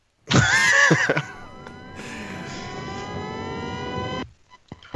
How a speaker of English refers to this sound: Somebody had an engine revving up in the background there, but I thought that was you. No, it wasn't me. I don't know where that was coming from.